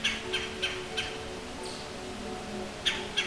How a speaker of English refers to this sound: The red-bellied woodpecker's call is a stuttered guttural call, a sound often made while clinging to the trunk of a large deciduous tree.